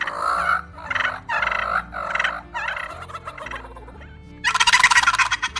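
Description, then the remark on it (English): A person imitates a male turkey (gobbler) call while demonstrating calls at a turkey and wildlife calling competition: a run of five or six quick, throaty yelping notes, then a loud, fast rattling gobble burst near the end, clear with no talking. “Next is the gobbler, or male turkey.”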